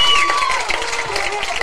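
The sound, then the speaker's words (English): A broad wash of crowd noise at a baseball game, steady and loud throughout, with a whistle-like tone piercing through near the start, as fans cheer after a triple to the fence in right center field scores a run for Columbia. “The crowd loves it.”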